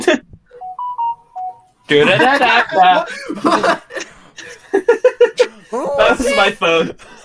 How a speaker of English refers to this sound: you still got that basic ass ringtone while I'm sitting here with the Persona 5.